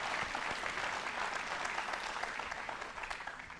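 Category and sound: crowd, audience applauding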